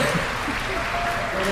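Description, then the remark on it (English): A brief burst of applause, a small group clapping steadily, forming a dense, even patter for just over a second with a faint hint of voices underneath. “We're applauding for you.”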